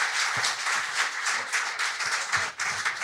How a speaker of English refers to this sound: Round of applause for all of our contestants, Thank folks.